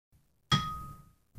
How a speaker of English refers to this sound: That sounds like the bell. That's nice.